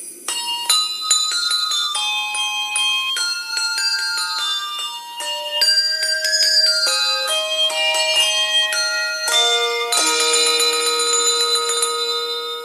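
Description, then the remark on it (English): Clear, bright bells ring out a cheerful Christmas carol tune in a Hershey's Kisses chocolate advertisement, where the candies appear as bells arranged in the shape of a Christmas tree; each note sharp and sustained, stepping through the melody at a steady pace before ending on a fuller cluster of chimes. “let's arrange them in the shape of a Christmas tree and ring them to the tune of Wish You a Merry Christmas”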